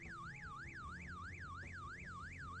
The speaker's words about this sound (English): When we originally, we didn't use music at first in this sequence, and that moment with the alarm going off used to give you a heart attack if you didn't have some kind of background music.